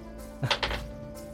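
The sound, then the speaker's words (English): Dice clatter briefly across a hard surface, rolled for a strength saving throw and landing on a 1: a soft thud followed by two or three quick, bright clicks, then quiet. No one speaks. “And I rolled a 1.”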